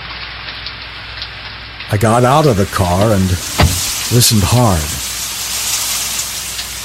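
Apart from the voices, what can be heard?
rain falling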